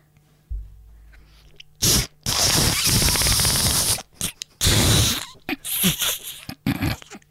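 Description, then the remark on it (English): A string of loud, airy farts: breathy, hissing bursts of varying length, one long sustained blast in the middle followed by several shorter puffs, with no talking. “I do really airy farts. Yeah, yours was more gassy. Mine was more liquidy.”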